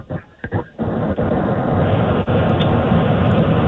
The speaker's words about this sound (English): Yeah, it's a Cessna. Yeah, I can tell. I can hear the engine.